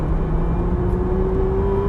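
A truck engine revs, a steady low rumble with a rising whine as it climbs in pitch over a couple of seconds, with fumes blowing out of the truck, with no talking.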